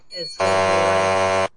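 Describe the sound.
A short voice sound gives way to a loud, harsh buzzer blaring steadily for about a second, a flat, raspy electronic drone that cuts off abruptly.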